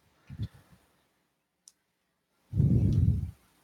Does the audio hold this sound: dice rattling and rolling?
yes